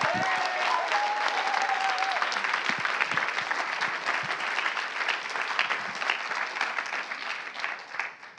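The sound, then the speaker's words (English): A church audience applauds steadily for about eight seconds, a dense wash of many hands clapping with a brief whistle early on, fading slightly at the end. “I'm loving all the applause this morning, this is great, praise God.”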